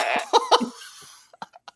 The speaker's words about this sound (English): Well, the button on this just said whoopee. I thought it was going to be like whoopee, but apparently that's code for dropping a fart, passing gas here.